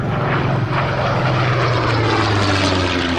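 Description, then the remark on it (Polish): American propeller airplanes flying from the airfield at Brindisi, Italy, drone steadily overhead above the Tatra Mountains in September 1944, the loud engine hum holding a low pitch that slowly slides downward as it passes, with no voices present. “Krupski i Berger skaczą z radości na widok amerykańskich samolotów, które lecą z lotniska we włoskim Brindisi”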